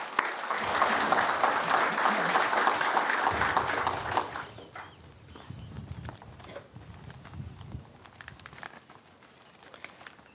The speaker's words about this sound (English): I'd like to give a round of applause to all that helped put this thing together, the VFW, the Ladies Auxiliary, the Boy Scouts, JROTC. Just a fantastic job putting this thing together. So I'd like to give them a round of applause, please.